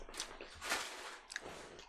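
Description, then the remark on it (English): Crisp crunching of coated seasoned peanuts (Manimoto's, a Frito-Lay brand) being chewed, a few irregular bites with sharp crackly bursts and softer grinding between them, fairly quiet and with no talking. “All right, well, let's do the Manimoto's, because it's crunchy.”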